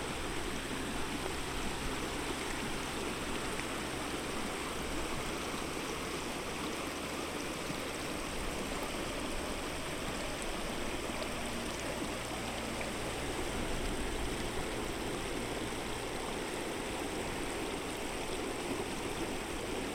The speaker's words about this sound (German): Das Wasser fließt sanft über die Felsen im Flussbett und schon bald strömt es unter dir hindurch, als du auf einer Brücke stehst und die Natur um dich herum bewunderst.